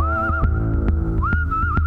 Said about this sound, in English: Oh, damn it! Damn it! It's that whistling farmer man again!